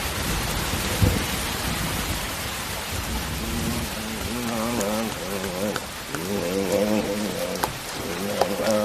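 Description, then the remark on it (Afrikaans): Steady rain pours down in a continuous hiss with occasional louder drips, while muffled voices murmur faintly beneath it during the second half. “Tot die laaste druppel geval het.”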